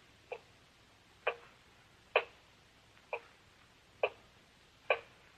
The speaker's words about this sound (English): Terrible clock. Ticking. Ticking. Yeah, I know. I've been sitting here listening to it. I can't stand it anymore. I'll stop it.